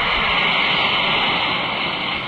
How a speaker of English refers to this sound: Now listen as an Alka-Seltzer tablet is dropped into a glass of water. The sound is meant to brand the product. Then just drop one or two tablets into a glass of water like this. Listen to its fizz.